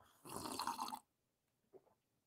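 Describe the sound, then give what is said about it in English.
A loud, airy slurp of coffee lasting under a second, followed by a pause and a short, soft gulp as it's swallowed. “Good God, let me get a sip of this coffee.”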